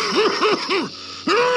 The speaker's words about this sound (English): There! I heard him cough. Did you hear that cough? Oh, I hope he's all right. He got out of a sick bed to come here this evening, you know. He was gassed during the First World War,